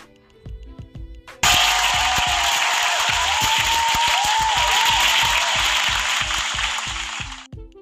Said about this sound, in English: So, you know, round of applause for you guys.